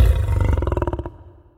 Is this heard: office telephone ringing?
no